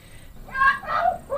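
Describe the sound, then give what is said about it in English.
A magpie gives a warning call: three rough, warbling bursts in a mid-to-high register, moderately loud over a faint background hiss, with no one talking. “This bird is saying, go away.”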